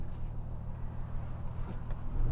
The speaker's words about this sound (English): I'd say apart from the engine, that 3.5 litre straight six, it's totally... Which sounds great though. It does. That induction noise is mega. I mean, we've got to go easy on the old thing, so we're not winding it right out, but...